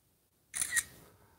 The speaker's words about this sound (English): I'll take a picture of it right now because I'll probably throw this one away as soon as we're done.